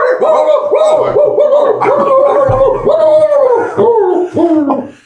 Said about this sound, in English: Somehow that bark is far less intimidating than Cujo.